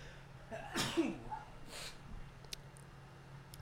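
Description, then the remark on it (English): A single sharp sneeze bursts out, followed by a breathy exhale and a few faint clicks against a quiet, low hum. “I think that sneeze is back.”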